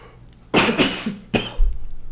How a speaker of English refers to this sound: So I apologize. I got choked up drinking my water.